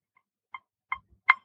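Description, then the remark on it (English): A Metro Timer metronome app ticks at a quick, steady pace, set to 159: four short, bright clicks in a row, the first barely audible and each following one louder, with no one speaking. “So, you know, you'd start the little Metro Timer, and I could even see if I can open it right now, and you kind of hear what this is.”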